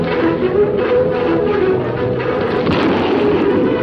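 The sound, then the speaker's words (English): Gunfire from the opening of the TV show The Lone Ranger, which premiered on ABC in 1949, crackles in a dense, sustained burst, loud and muffled, with overlapping shots blurring into a steady booming roar throughout. “A lot of gun.”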